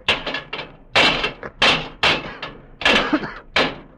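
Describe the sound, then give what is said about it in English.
Repeated heavy metallic bangs and thuds, roughly a dozen irregular blows in quick succession, as levers strike and pry at locked, solid brass doors in the base of a monument, loud with ringing decay. “Those are brass doors in the base, and they're locked. The machine, it must be in there inside. We must get it. Break down the doors.”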